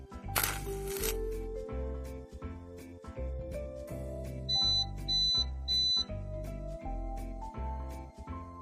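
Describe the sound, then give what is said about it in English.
A Point home alarm device sensing smoke sounds three short, piercing electronic beeps in quick succession, rising over upbeat background music with a steady thumping beat. “Point can sense smoke.”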